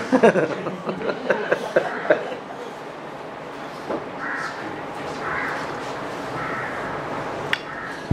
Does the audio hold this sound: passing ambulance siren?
no